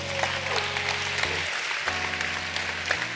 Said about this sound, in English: Clap for Jesus.